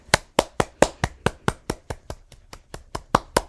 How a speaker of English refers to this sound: So right now, I want you to clap. Clap if you believe in fairies. Clap if you believe in Neverland.